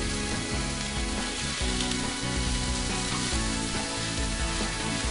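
Hot olive oil sizzles and crackles steadily over sage leaves, a dense frying hiss that holds at an even level throughout with no voices.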